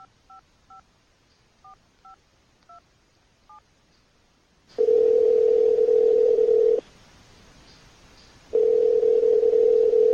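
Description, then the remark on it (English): A phone keypad beeps through about seven quick button presses, then a loud, steady telephone tone sounds for two seconds, pauses, and starts again, with no voices. A call is being placed to the Technodrome to reach Krang. “Let's call real quick. Try to get Krang on the phone.”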